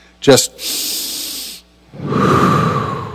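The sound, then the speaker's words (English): A single slow, deep breath: a steady airy hiss of inhaling, a brief pause, then a fuller, lower rush of air breathing out, with a small vocal catch just before it begins. “Just take a breath and notice your breathing.”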